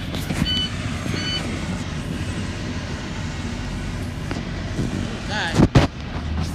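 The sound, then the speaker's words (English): A steady, heavy low rumble of a moving bus interior fills the whole recording, with engine and road noise droning on and a couple of sharp clunks or jolts near the end. “Anyway, I'm podcasting on my bus because I got bored”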